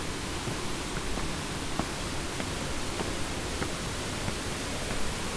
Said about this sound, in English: The water is really rushing now.